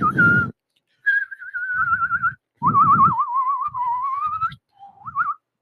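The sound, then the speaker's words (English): Someone whistles through pursed lips in several short, wavering phrases separated by brief pauses, fairly loud, with breathy puffs and rustling underneath some of the notes. “All right, nobody wants to hear us whistle anymore.”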